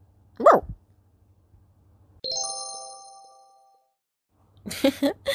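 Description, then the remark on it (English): A puppy being told to fetch a ball lets out one short, high yip, followed by a clear ringing chime that fades slowly, then a cluster of quick vocal bursts near the end. “Funny puppy.”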